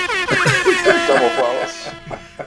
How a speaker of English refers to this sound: But one thing, like one thing, I think that earned some air horns.